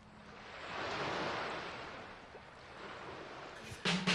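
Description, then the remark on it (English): Ocean surf rolls in as a broad hissing wash that swells to a peak and slowly recedes, followed by a brief sharper burst of noise near the end. No one speaks. “Surf's up! Whoosh!”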